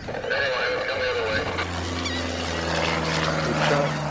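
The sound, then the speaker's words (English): A small Cessna propeller plane's steady, low droning hum sets in and holds as it passes overhead along a Jersey beach shore, carrying volunteers who count the birds it flushes, while a flock of birds chatters and calls loudly throughout. “Here comes the plane”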